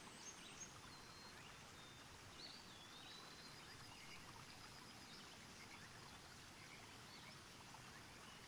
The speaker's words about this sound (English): And all he can hear is the water rushing below.